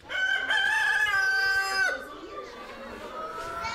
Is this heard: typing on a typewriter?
no